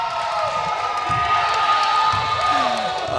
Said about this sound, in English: Listen to the crowd, folks.